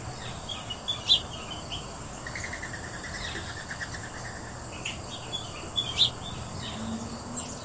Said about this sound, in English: this is what you wake up to in the morning, Shelley. And that's what I like as well. Birdsong.